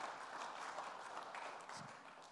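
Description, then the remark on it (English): A crowd claps together in steady, dense applause that sounds subdued, holding evenly for a couple of seconds with no voices. “It's okay to clap.”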